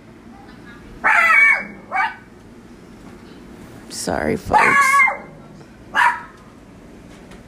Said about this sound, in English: Excuse the demon dog, trick-or-treaters are outside.